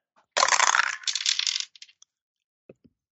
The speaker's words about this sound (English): How about spot hidden rolls from everyone? Start getting the dice warmed up.